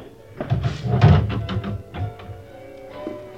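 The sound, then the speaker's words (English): A door is being handled and pushed shut, a cluster of wooden clunks and thumps with a short rattle, then quieter background noise with no one speaking. “I'd rather you leave the door open, if you will.”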